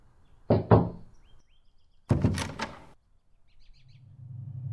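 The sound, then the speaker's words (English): Knocking on a front door on a Sunday morning: a quick double knock, a pause, then a louder flurry of several raps, with faint birds chirping in the background and a low rumble at the end. “Who could be knocking on Sunday morning?”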